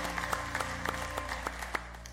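A crowd at a church service claps together in steady applause, giving the Lord a hand clap of praise, many hands blending into a dense patter with a few sharper claps standing out.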